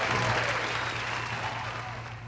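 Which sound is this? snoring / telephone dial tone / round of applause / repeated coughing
round of applause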